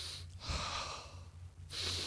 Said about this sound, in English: I'm sharing the birthing experience with her by doing what? By breathing. I'm breathing.